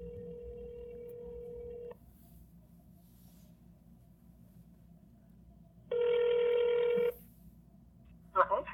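A telephone ringback tone buzzes steadily for about two seconds, pauses, then rings again more loudly, followed by a brief clatter as the line is picked up, over a low background hum.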